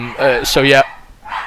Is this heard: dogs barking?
yes